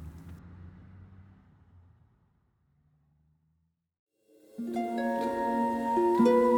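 A low, steady car engine drone rumbles for about two seconds on the open road of a highway, then fades into silence before unrelated music with sustained tones begins. No one speaks.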